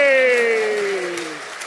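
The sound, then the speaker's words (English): Audience applause runs steadily under a loud, sustained voice that holds a tone and slowly slides downward in pitch, like a drawn-out cheer, over about two seconds. “And I'm hoping that the claps will resound for the fact that these imports from other places, you know, I'm one of your own, okay?”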